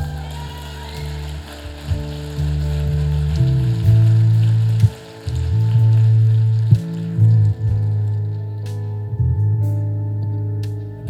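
An audience claps to the Lord together in a dense, steady patter that sounds almost like rain, carried over a loud, sustained low musical drone. No one speaks.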